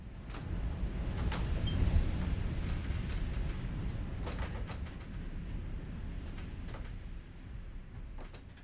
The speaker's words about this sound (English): Insert sound of cabin creaking in a November storm blowing from the southwest.